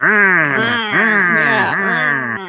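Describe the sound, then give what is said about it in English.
A person's voice imitates a mummy's moan, a loud sustained wailing groan that swoops up and down in pitch in three drawn-out swells, heard alone. “And the mummy smashes down the door and then, you know, follows them making more mummy noise.”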